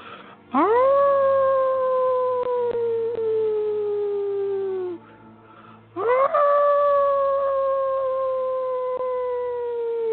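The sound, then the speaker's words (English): A wolf howls twice: each long, loud howl swoops upward, then holds and slowly sinks in pitch. The first lasts about four seconds, and a second follows after a brief pause. “So with a deep inhale, allowing yourself to feel this moment, allowing yourself to put all of it into your howl.”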